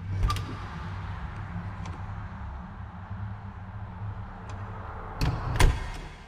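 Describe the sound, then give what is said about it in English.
A cubicle door creaks open, a few light clicks follow, then it shuts with a solid knock and rattle, over a steady low hum with no voices. “Flip-flops hitting the soles of feet before the cubicle door next to me opened and closed.”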